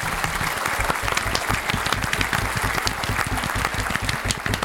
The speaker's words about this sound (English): I love that applause. It's really good. I love it. Tone. It sets a tone.